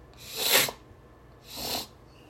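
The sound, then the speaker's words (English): Two breathy sniffles about a second apart, the first sharper and louder, both with a hissy airy quality against a quiet background. “Once again, sorry for all the sniffling.”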